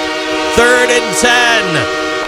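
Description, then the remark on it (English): A loud, sustained train horn blares at the Buffalo Bills football stadium during a game, its rich chord-like tones holding steady while a few brief, noisy bursts and sliding sounds cut across it. “If you've ever been to the stadium, that train horn is the essential sound effect of Buffalo.”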